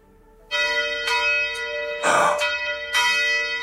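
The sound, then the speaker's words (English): A bell rings out in several strong, resonant strikes, each leaving a long shimmering ring that overlaps the next, loud, with no voices present. “there's the bell.”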